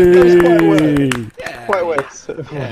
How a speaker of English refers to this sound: Which I think is pretty good going, actually. So a little round of applause.